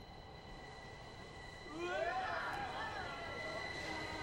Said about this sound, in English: Here's another example of a scene that was shot without permission, where Chisato balances on the edge of the platform as a train is about to pass.